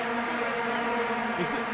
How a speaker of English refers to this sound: Told you it sounds nothing like a didgeridoo. This is a didgeridoo. No, I said it sounds nothing like a didgeridoo.